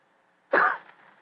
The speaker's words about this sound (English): After a moment, he gave what he thought was a discreet cough.